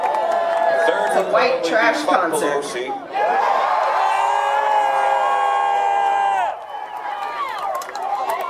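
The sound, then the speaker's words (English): A concert crowd cheers and yells continuously as the performer shouts against Joe Biden, with one long sustained shout rising above the din for a few seconds before the mixed whoops and voices carry on. “Listen to those cheers.”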